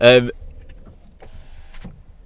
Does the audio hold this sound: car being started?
yes